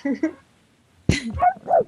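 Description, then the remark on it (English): A small dog lets out a sharp yap after a brief pause, followed by a couple of high-pitched whimpering whines, with short voiced sounds just before. “But back to this before I was rudely interrupted by my dog.”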